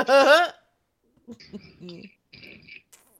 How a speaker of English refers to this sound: WD-40 my chair here. Dying. Jesus. Squeaky. Ooh, squeaky. Ooh. I'm sitting in my rocking chair, rocking back and forth.